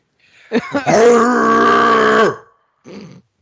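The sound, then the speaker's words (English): A man lets out a couple of short grunts that swell into a loud, sustained, throaty roar lasting nearly two seconds, followed by a brief, quieter vocal burst. “He just roared up.”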